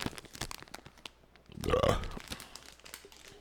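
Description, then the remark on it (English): A plastic bag of Israeli Bamba peanut butter puffs crinkles, with a louder ripping tear about halfway through as it's pulled open, followed by scattered rustling. “How about we start this off with the Israeli Bamba peanut butter puffs? Yeah. We can dip these in another shot. Mm. Those seem like the safe. You gotta do the ASMR.”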